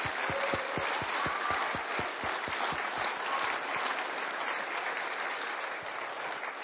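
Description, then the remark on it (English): A church audience applauds graduates warmly during a service, a dense wash of many hands clapping at steady volume for several seconds, with a few louder claps standing out near the start before the applause thins slightly. “Let's give a big round of applause.”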